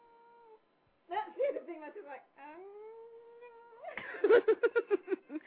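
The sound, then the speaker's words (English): A cat meows several times in a row, drawn-out and wavering, ending in a burst of quick, pulsing trill-like cries. “Nala, she's talking to you. You hear her?”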